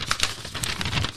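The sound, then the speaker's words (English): Rapid papery riffling as pages of a book of phone numbers are flicked through, a quick run of soft crisp flutters, with no talking. “Sorry, just flicking through this.”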